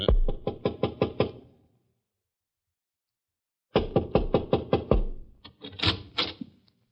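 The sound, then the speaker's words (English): A quick series of firm knocks on a door, then a pause of a few seconds before two more rapid, insistent bursts of knocking, loud with no voices. “Want me to knock?”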